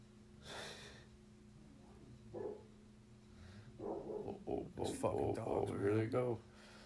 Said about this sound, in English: Damn, why are they barking? I think they're like fighting. That's unreal. You had a cat or something? Two of them. Yeah. Damn, dude, they're fighting shit? Yeah. They're probably fighting over a toy.